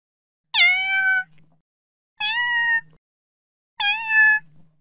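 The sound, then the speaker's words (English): A cat meows three times at steady intervals, each call a clear, drawn-out mew with short silences between. “Yes, our dancers in this story are cats.”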